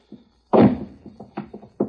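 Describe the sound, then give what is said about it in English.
A heavy thud as someone who has crawled through drops down onto the floor inside a store, followed by a few lighter knocks and shuffling bumps, with no talking. “Don't skin your legs on it when you drop.”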